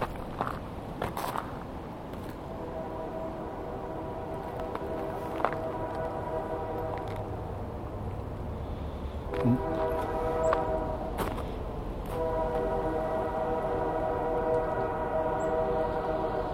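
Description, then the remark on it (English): A train rumbles past while its whistle sounds in long, sustained blasts, blown where a trail crosses the tracks; steady harmonic tones keep breaking off and resuming over the continuous roll of the cars. “They blow the whistle a lot going through here because the trail crosses the tracks.”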